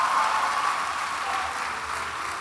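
An audience claps steadily, a dense continuous patter of many hands at an even, fairly strong level that holds throughout without voices over it.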